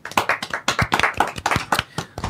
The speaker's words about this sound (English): Thank you, Jake. Round of applause for Jake.